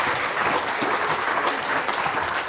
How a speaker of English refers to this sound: Well done, guys. You've done really well. Have a sit back down. You've done really well. Round of applause for helpers.